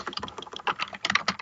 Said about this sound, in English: Oh, someone's typing frantically.